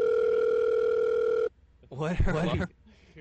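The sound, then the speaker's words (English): A phone ringtone sounds as a steady, loud electronic tone for about a second and a half, cuts off abruptly, and is followed by a brief burst of someone speaking. “What was that ringtone?”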